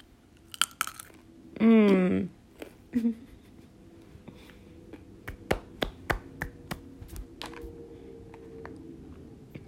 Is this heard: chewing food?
yes